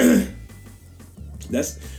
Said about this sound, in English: That's the cough sound that Alan Watts had before he died.